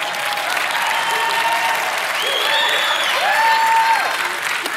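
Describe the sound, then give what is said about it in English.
An audience applauds steadily for about five seconds, a dense, even wash of clapping with a few rising whoops and cheers cutting through on top. “I pay people to clap.”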